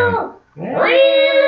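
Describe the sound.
A person's voice imitates a startled, yowling cat on hot sand: a short strained cry, a brief gap, then a rising, drawn-out wail held loud.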